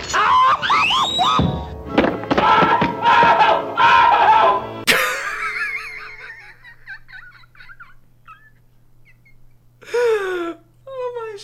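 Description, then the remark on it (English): Tom the cat from Tom and Jerry yells in pain after Jerry places the bear trap Tom set up behind him: a long, strained yell, loud and warbling with shrill gobbling breaks, cuts abruptly into quieter wavering whimpers, then one more sharp howl flares up near the end. “It also has, in my opinion, the funniest Tom yell of all time. It's when he sets up a bear trap only to have Jerry place it behind him.”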